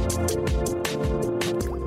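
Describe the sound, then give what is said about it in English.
A squeaky plastic water bottle, with several short squeals and splashy liquid sloshing as it's opened and sipped, repeating in quick bursts with no talking. “These are the loudest water bottles. The squeakiness. Squeak.”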